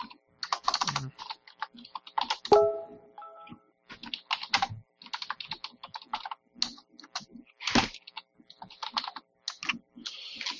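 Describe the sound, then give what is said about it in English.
Crisp typing on a wireless computer keyboard: irregular bursts of rapid clicking keystrokes with brief pauses, continuing throughout, with one short tonal blip near the start and no talking. “It's a wireless keyboard and it doesn't pick up if it's not in the right spot.”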